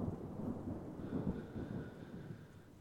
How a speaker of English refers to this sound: The rain's coming down awful hard, though.